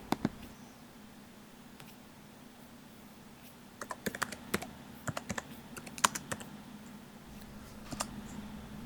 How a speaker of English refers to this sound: Some very determined typing.